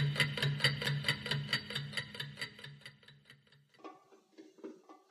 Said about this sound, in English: The clock is ticking.